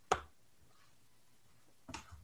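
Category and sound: human body sound, sneeze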